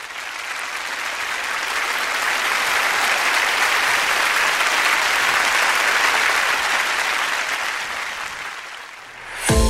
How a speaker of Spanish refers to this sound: Lo hiciste. Te mereces un aplauso.